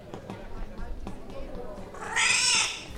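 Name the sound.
cat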